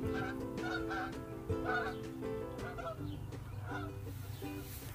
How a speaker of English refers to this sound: And if you listen closely, you can hear some Canadian geese.